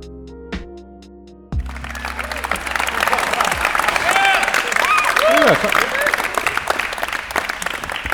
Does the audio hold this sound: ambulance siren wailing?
no